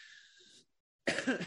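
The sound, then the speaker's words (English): A single loud cough bursts out after a soft hissy stretch and a moment of silence, harsh and breathy with a rough throaty edge. “Excuse the coughing, people.”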